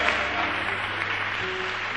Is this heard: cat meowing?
no